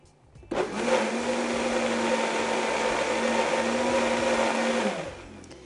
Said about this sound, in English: First, I'm going to start blending though and see if it's thick enough. So I'm going to go ahead and add a little bit of water and give it another whirl.